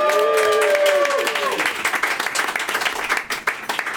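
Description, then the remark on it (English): An audience at a Fringe show bursts into loud, dense applause to welcome a performer, with high whoops and cheers rising over the clapping in the first moments, then steady, crackling clapping carries on to the end. “You can click if you like, but I think she'd prefer an applause and clapping and whooping and all that kind of thing”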